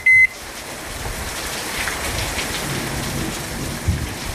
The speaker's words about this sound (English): It's raining super hard. We're hiding under an awning right now. Do you hear that? Do you hear that rain? It is coming down hard, and it came down out of nowhere.